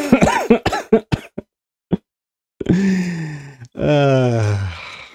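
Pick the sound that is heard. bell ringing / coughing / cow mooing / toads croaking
coughing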